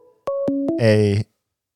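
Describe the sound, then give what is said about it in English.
One of several devices (a computer, iPads, a Surface) rings with an incoming call: three quick descending electronic tones, then a loud, buzzy, sustained tone, all clear with no talking over it. “I've got six devices in front of me and something's ringing.”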